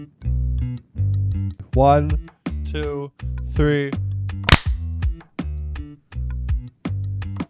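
A group of hands claps in unison to sync an audio recording, one sharp, loud burst midway, heard over a pulsing, repetitive low musical pattern with some sweeping vocal-like tones.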